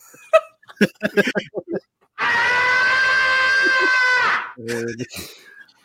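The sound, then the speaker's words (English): A man lets out a loud, sustained, strained scream during a bear attack, lasting about two seconds and harsh, preceded by short choppy vocal bursts and followed by brief laughter-like sounds. “That's what you, yeah, that's my only job is to scream.”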